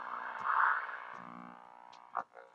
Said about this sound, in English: So now it's on a long wave. And you can hear that there's interference here. So I'm going to move it towards the screen, and you're going to hear that it goes worse.